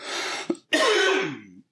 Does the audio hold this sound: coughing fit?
yes